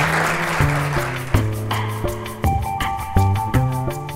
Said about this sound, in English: Thank you, everybody, tonight. And let's have another round of applause for our amazing esteemed panelists.